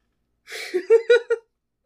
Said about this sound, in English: I'm trying to do a quiet yawn. It's not working. Yawning is impossible to do quietly.